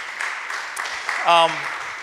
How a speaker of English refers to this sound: They are killing it already. So yeah, you can clap for that church.